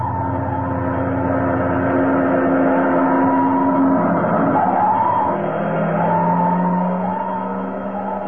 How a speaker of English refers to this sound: Uh-oh. What's the matter? Fire engine.